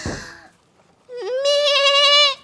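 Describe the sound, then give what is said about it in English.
A brief rough, breathy burst, a short pause, then one loud, drawn-out goat bleat with a wavering, quavering tone that holds for over a second before cutting off. “Prancing through the snow in a one horse, meh, in a one goat, open sleigh.”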